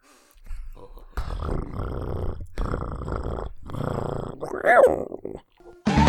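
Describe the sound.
A person imitates a cat in a fairly loud voice, with several bursts of growly, purring noise and a rising, meow-like wail near the end.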